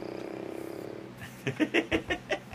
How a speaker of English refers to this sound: I like it when you purr.